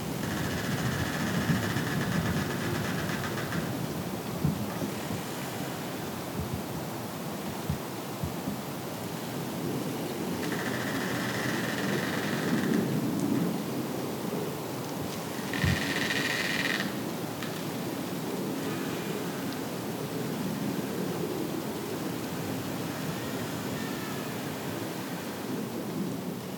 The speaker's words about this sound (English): That was, as far as I could tell, the creaking of trees, recorded at Red River Gorge, mid-December 2022.